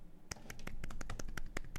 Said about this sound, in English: he tees off. Everyone's quiet. You get the golf clap.